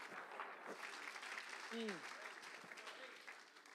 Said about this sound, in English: Come on, could you clap your hands, everybody, in appreciation for what Jesus has actually done for each and every one of us.